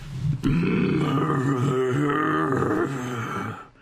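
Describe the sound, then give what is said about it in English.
A long, deep, gravelly grunt from the throat lasts several seconds, starting with a sharp rasp and holding steady and loud before trailing off, with no talk over it. “Sorry, I had to clear out my throat.”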